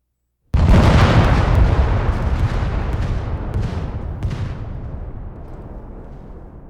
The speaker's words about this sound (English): Now what happened here is all of the explosions kind of went off at once. So if I want to stagger them a little more, I can go back into my audio modifiers and add a delay, which would delay the start of it.